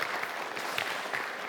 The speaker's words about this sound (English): So can we just give a round of applause to you guys? Seriously, thank you so much. We really appreciate it.